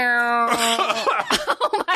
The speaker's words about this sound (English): I choked. Yes, you did. I actually coughed and choked.